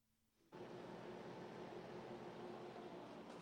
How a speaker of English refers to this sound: I just threw on my air conditioner that doesn't really blow out that cold of air.